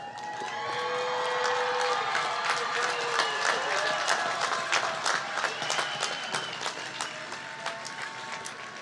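A large crowd at a graduation ceremony for the class of 2023 applauds steadily and loudly as graduates move their tassels from right to left, dense clapping rising quickly and holding through the whole stretch, with scattered cheers and whoops ringing out above it.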